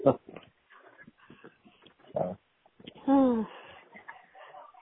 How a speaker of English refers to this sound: and then I heard the dog talking.